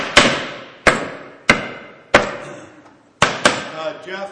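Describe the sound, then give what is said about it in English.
A hammer strikes pieces of wood six times at an uneven pace while putting together a dream house, each blow sharp and loud, with a short ringing decay; the last two hits land in quick succession. “I've got my pieces of wood.”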